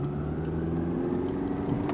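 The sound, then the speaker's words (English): A car drives straight along a road on a NASA center campus, heading toward Building 29, with a steady, low engine hum and road rumble, holding an even pitch and level throughout with no voices. “But you might want to drive like an astronaut. Yeah, keep going straight.”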